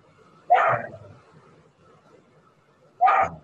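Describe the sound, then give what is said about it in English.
A dog barks twice, two loud, abrupt woofs a couple of seconds apart, with only a faint low background hum between them and no talking. “Hey, dogs, come here.”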